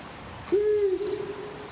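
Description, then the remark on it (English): A single long, steady owl-like hoot in a film, from a man in an owl mask who is supposed to be speaking a line, starts abruptly and holds for over a second, sounding hollow and far away against a faint background hiss, with no voices present. “But it sounds like the hooting is coming from a million miles away.”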